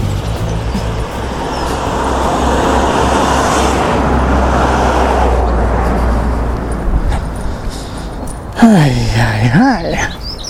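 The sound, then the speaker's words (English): A steady, loud wash of road traffic fills the scene, a continuous roar with low engine rumble throughout; near the end a brief wavering voice cuts in over the noise. “Always tons of traffic.”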